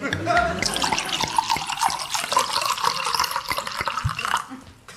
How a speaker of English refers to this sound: Just let Daddy pour himself a nightcap, and we'll begin.